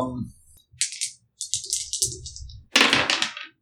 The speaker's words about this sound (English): Hey! I have rolled a double 2.